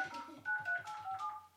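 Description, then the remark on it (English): A quick series of touch-tone beeps as a phone number is keyed in to call a grandmother, each short dual-pitched tone following the last in a brisk, steady rhythm, clear with no talking. “Who wants to call Nana and put her on the podcast?”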